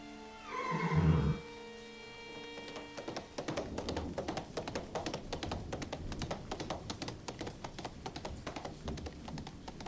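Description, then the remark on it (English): A horse lets out a loud, shaky whinny, then rapid hoofbeats start up and keep pounding in a steady rhythm as it gallops off: Heathcliff riding away on Master Hindley's best horse. No one speaks. “Heathcliff's taken Master Hindley's best horse and he's gone.”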